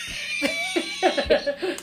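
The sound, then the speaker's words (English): A short fit of coughing, several rough, hacking bursts in quick succession with throaty voiced tails, moderately loud, with no talking. “You got to work on that cough.”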